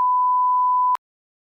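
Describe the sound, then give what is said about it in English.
A single steady, high-pitched censor bleep holds for about a second at even loudness, with sharp clicks where it starts and cuts off, followed by silence. No voices are audible. “I'm going to have to beep that.”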